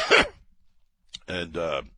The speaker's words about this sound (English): I'm sorry I coughed. I got a little gulp of oxygen, and I'm allergic to oxygen.